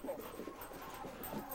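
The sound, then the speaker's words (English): A dog pants rapidly and steadily while running around excitedly, with soft scuffling and pattering underneath, a continuous, busy sound at moderate volume. “If you can hear a noise, it's the dog running around.”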